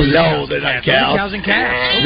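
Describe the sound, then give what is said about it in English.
Lambs baaing in quick succession, their wavering, quavering bleats overlapping one another, loud, with barely a pause throughout. “YouTube says lambs baaing. So I'm going to say yeah, those are lambs baaing.”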